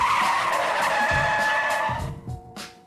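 A loud, sustained screech of car tires skidding as brakes lock, a high squealing whine with low rumbling underneath that cuts off abruptly near the end, leaving a few short thumps.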